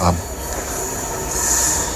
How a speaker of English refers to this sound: Oh, just a minute. There's a train going to come through, so...